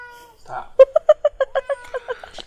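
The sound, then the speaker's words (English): A cat named Kitty meows in a quick run of about a dozen short, insistent chirpy calls, one after another with barely a pause, fairly loud and clear. “I think Kitty wants jerky.”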